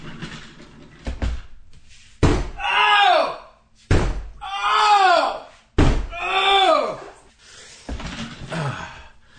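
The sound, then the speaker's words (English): A head bangs against a wall in a series of loud, heavy thuds, roughly every two seconds, each followed by a drawn-out pained groan or wail. “Sometimes it's good to just bang your head against the wall.”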